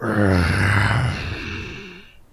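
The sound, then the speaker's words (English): A person does a low, rough growl in imitation of a fire lion at a door: one sustained, rumbling vocal snarl that starts loud, wavers in pitch, then trails off softer over about two seconds. “Oh, that sounds like our lion friend.”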